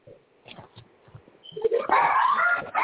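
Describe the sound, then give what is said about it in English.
A dog lets out a few short, quiet yips, then breaks into louder, drawn-out whimpering whines mixed with sharp barks, with no voices. “Whose dog is that? Mm-hmm. Yeah, it was my dog.”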